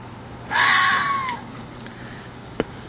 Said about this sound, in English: One of the last things she made was a Christmas CD. But true to her personality, she inserted the howl of a red fox at random moments. Listen.